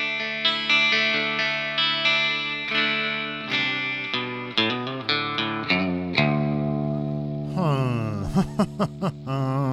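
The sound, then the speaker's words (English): An electric guitar with just a little reverb plays a series of picked notes and chords with a light reverb tail, ending in a few bent, wavering notes; moderately loud, no voices. “Let's change. Just a little bit of reverb. Just a little. Go the neck or the bridge.”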